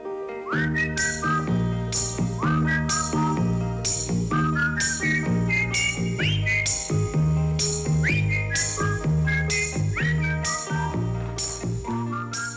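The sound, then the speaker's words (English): A whistled song melody from a song that reached number 20 on the charts, loud and continuous, with repeated upward-swooping notes in a steady rhythm over a full, busy backing, with no talking. “It's just whistling. Just whistling.”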